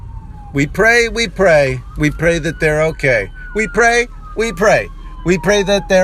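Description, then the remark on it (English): Sirens of emergency truck number 829 and an escorting police SUV, en route to an emergency in the Hollywood hills, wail in the background, a steady, slowly sliding tone running beneath continuous speech from a man talking throughout. “As truck number 829 is en route to an emergency, flanked by a police SUV.”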